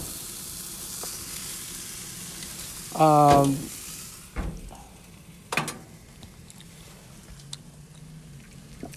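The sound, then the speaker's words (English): Chicken sizzles steadily in a hot pan, a constant hiss broken by a brief squeak and a few sharp clacks of a utensil as pieces are flipped. “As you hear the sizzle again, as I flip some chicken.”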